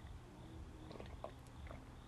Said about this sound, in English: I'm just taking a sip of coffee.